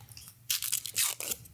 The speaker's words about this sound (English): I like to eat the cookie first. Hold on. It sounds so crunchy. ASMR. It's like ASMR. It's the fortune cookie.